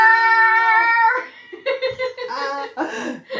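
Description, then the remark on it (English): A voice mimics an angry cat with a long, strained yowl that breaks into choppy, snarling bursts, followed by laughter-like voiced sounds, fairly loud. “I'm now instead picturing of, this dead cat jumping up the wall, swiping at the mask.”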